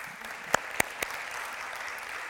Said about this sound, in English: Listen, I like how clappy y'all are getting lately. This is, I don't even recognize y'all anymore. Clapping, and I like it.